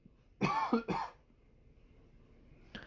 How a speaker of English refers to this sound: That sympathy cough there.